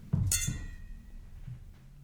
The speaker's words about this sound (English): Oh, fuck yeah. So we what just clink it? Martini glasses, and that's a good martini. Thank you. We make good martinis.